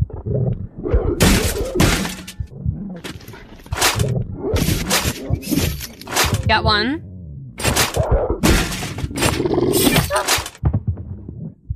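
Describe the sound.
Wolves snarl and growl in harsh, repeated bursts, mixed with heavy thumping hits as they attack, while a person talks briefly over the commotion.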